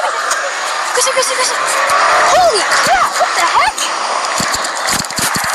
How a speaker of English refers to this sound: Dude, that was no Demogorgon. Wow. Was that a car? That was a car. Bro, that was literally a car.